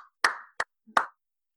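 crowd, slow clap

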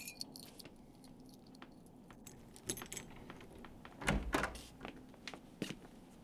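household object, keys jangling

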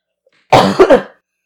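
human body sound, cough

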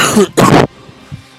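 human body sound, coughing and throat clearing

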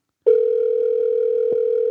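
signal or alarm, telephone dial tone

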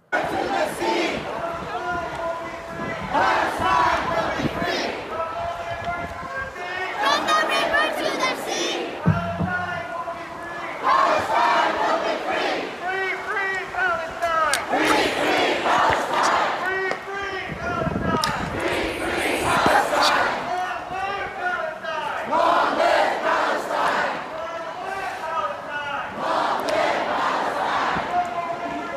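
crowd, protest crowd chanting

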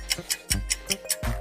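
signal or alarm, game timer clock ticking

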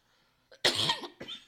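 human body sound, woman coughing

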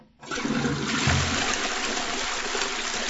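household object, toilet flushing

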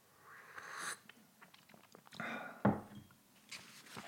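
food or drink, sipping hot tea

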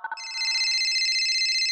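signal or alarm, telephone ringing

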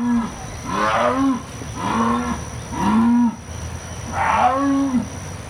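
animal, jaguar roar

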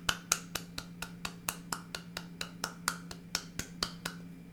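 human body sound, one person clapping hands

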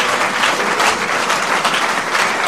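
crowd, audience applause

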